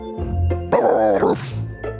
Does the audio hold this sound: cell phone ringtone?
no